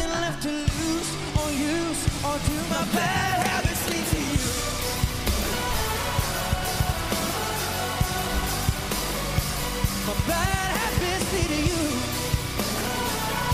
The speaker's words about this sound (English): Oh, there we go. There's the death growl.